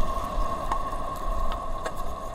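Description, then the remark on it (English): Wind whistling over crab burrow holes in the sand, called crab flutes: a steady, mid-pitched hollow tone hums continuously above a rough, blustery rush of wind, with a few faint ticks scattered through. No one speaks. “But we could hear the wind whistling over the top of the crab flute, this wind instrument that the crab has made.”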